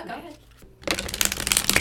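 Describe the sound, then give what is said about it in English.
After a brief faint murmur and a short pause, a deck of tarot cards is shuffled by hand for a tarot reading, a loud, rapid, continuous papery riffling and fluttering that runs to the end. “Okay, I'm going to shuffle.”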